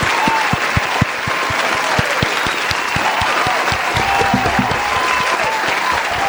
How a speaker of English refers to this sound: Let's hand clap. Let's clap for Devontae's World. Let's do it.